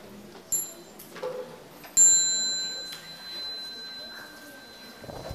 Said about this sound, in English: So when you hear the small bell, you stand up and bow to the Sangha before you go out and continue.